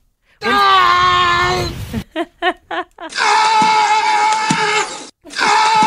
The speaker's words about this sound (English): I can hear the fins. But otherwise, I wouldn't have been able to know. Who knew? Yes. And is this all sea lions, or is this just one unique, like, doppelganger sea lion to Tom Hanks?